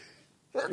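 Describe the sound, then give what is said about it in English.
After a brief hush, a single sharp sneeze bursts out loud, a quick voiced blast that cuts off abruptly. “Excuse me. Bless you.”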